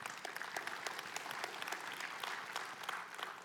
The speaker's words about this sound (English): Amen. Give God a hand clap.